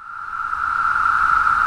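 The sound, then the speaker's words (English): A steady, loud chorus of 17-year periodical cicadas singing in the trees in summer in the Northeast and parts of the Midwest forms one continuous high-pitched whirring drone, slowly swelling slightly and never breaking, with no voices over it. “Periodical cicadas, the ones that push out of the earth only once every 17 years, are back. The trees ring with their singing, and the streets, sidewalks, gardens, and parks are filled with their cast-off shells.”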